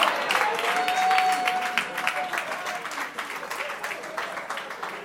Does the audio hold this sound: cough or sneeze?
no